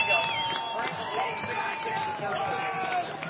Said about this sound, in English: If you hear the yelling on the near side here, it's the crowd for Franklin, happy over the fact that one of the guys that never plays,